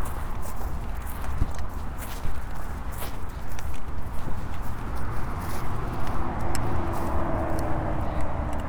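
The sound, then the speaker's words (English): Steady motorway traffic roar fills the background while irregular footsteps and occasional hoof-like thuds sound as someone crosses a field full of horses next to the motorway; a passing vehicle's drone rises and fades near the end. “just crossing a field full of horses next to the motorway.”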